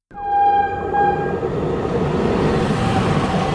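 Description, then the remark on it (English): A train rumbles steadily along the rails with a dense, low roar, while a sharp horn-like tone sounds briefly at the start and fades into the continuous rolling noise. “So I ran out of the office and got on the train.”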